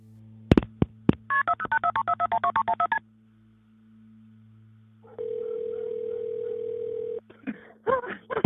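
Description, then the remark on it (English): A 911 call to Hampton County Police Dispatch on the evening of June 7, 2021: a few sharp clicks, then a rapid run of about a dozen telephone keypad tones, a pause, and a steady ringback tone before more brief clicks and tones, all clear. “At 10:07 p.m., Hampton County Police Dispatch receive a shocking phone call from Alex Murdaugh himself.”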